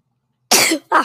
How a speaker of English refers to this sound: I had to sneeze real quick.